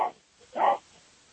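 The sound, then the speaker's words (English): A dog gives two short woofs through a participant's unmuted microphone during an online meeting, the first clipped at the start and the second fuller, sounding somewhat muffled, with no talking. “I was just going to say, whoever's dog that is, if you would not mind muting yourself, that would be very helpful.”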